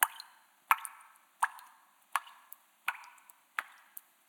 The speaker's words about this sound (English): You know, you got a house and it's like, you know, you walk into the kitchen and there's a leak, you know, dripping into the kitchen from the floor upstairs.